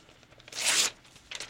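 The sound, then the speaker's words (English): A sheet of paper is ripped in half in one quick, crisp tear, followed a moment later by a shorter, softer rip. No one speaks. “He says, do you mind if I tear it in half?”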